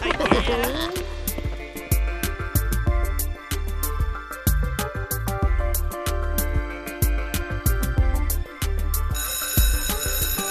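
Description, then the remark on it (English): A loud school bell rings steadily in the afternoon for about ten seconds, a harsh metallic clatter with sharp repeated strikes over a constant low hum. “Hey, what's up with the school bells this afternoon?”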